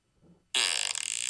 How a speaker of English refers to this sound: Well, this one's just classic fart. I felt like that was a squeezer. That's not classic. Yeah, I'd call it a squeezer.